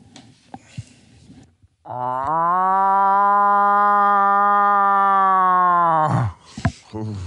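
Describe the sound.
A person voices a long, sustained nasal moaning call imitating a cow moose, holding a steady low pitch for about four seconds before breaking off, with faint movement and breaths around it.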